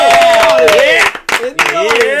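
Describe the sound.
An audience at a Yu-Gi-Oh! Crazy 8s event applauds and cheers loudly, a dense wash of clapping mixed with whooping voices, briefly dipping before swelling again.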